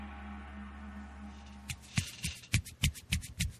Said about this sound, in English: That was my one hand clapping right there.